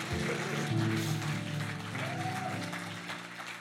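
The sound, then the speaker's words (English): An audience claps together in a dense, steady wash of applause lasting several seconds, a clap offering to the Lord for the baptizing of His people, layered over sustained keyboard or organ chords that shift pitch partway through. “Come on, let's give the Lord a clap offering for baptizing His people.”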